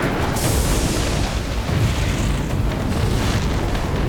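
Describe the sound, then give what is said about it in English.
A loud thunder boom from a lightning strike hitting a tree by the woods cracks in sharply, setting its branches in flames, then rolls on as a heavy, continuous low rumble for several seconds with no voices. “Another bolt of lightning hit a tree next to Oshun. Its branches burst into flames.”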